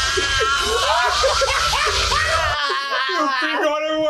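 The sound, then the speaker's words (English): A leprechaun character in a movie screams as he catches fire and flies up into the air: a high, wavering, loud scream with rising and falling pitch, mixed with frantic vocal cries that sound almost like shrieking laughter, over a rumbling low background. “Boy, I love his little scream.”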